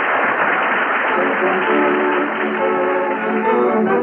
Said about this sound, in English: Did the first nighters like it? Listen to that applause.